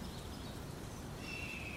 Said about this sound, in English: Hawk, nature-made.